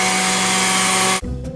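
A blender at Orange Julius in Poison Creek Mall runs with a loud, steady motor whir at full speed and a bright buzzing whine, cutting off abruptly after about a second, leaving a lower rumbling hum.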